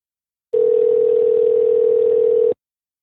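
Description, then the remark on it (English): A single outgoing phone ringback tone: one steady, clear electronic buzz lasting about two seconds, then silence. No one speaks. “I hear something ringing.”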